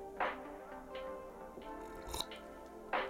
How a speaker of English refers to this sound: I didn't mean to slurp like that, my bad.